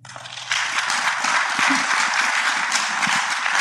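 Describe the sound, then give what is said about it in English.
An audience breaks into applause after a brief moment of quiet, the clapping jumping up abruptly and then holding as a steady, dense wash of many hands with no one speaking, clapping as a vote on whether software development has gotten too complex. “I see people not clapping.”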